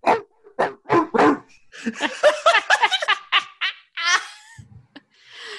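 A voice imitates a dog, giving a quick run of sharp barks and yaps that break into snickering laughter, followed by a brief hiss of breath at the end.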